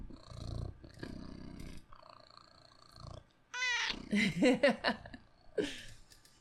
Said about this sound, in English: Will you purr for the people? Please.